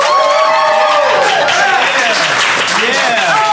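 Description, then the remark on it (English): An audience claps loudly and steadily for the whole few seconds, a dense wash of hands with cheering and whooping voices rising and falling over it, voting by applause for the magical romance put forward by Love Factually. “all those who are behind the magical romance put forward by Love Factually, clap now.”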